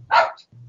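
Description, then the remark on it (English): A single sharp, fairly loud dog bark, followed by a low steady hum in the background. “How much he hates that dog. There he is.”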